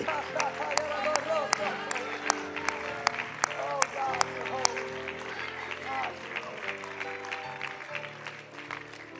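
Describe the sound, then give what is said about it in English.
An audience claps hands unto the Lord in worship at a night service, in a steady rhythm over music and voices. Sharp, even claps dominate the first half, then blur into a softer, busier crowd sound. “Come on, can we clap your hands unto the Lord tonight?”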